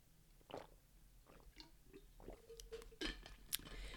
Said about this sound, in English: 1 second while I take a sip of water.